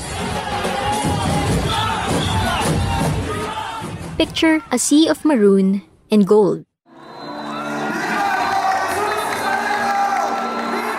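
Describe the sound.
A dense, roaring crowd of devotees at the January 9 procession of the Black Nazarene (the Tres Lacion) at Quiapo Church, Manila, loud and continuous. It briefly gives way to a single voice speaking, then the massed crowd noise swells back up.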